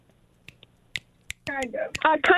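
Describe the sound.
A handful of sharp finger snaps, spaced irregularly at first and then overlapped by a person talking and laughing; the snaps are crisp.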